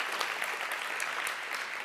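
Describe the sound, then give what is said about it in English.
An audience applauds the Lord, a steady wash of many hands clapping at once, dense and even in loudness, with no voices rising above it. “Let's applaud the Lord.”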